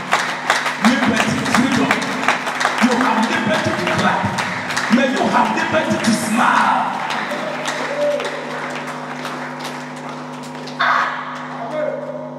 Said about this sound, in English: May you have liberty to clap your hands. Liberty.